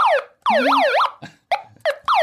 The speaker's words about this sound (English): the beeping you hear coming up is someone on the student council telling her time is up.